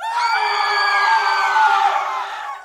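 Several people scream together in one loud, sustained, shrill burst that lasts a few seconds before trailing off, with no talking.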